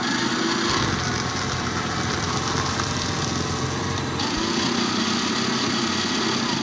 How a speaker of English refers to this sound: Do you really want my review? Here. It shreds paper like it's supposed to.